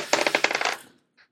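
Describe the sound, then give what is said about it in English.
A die rolls across a table: a quick run of sharp, bright clattering clicks that gradually slow and fade, then one faint final tap after a short pause. “can you roll a die for me, please?”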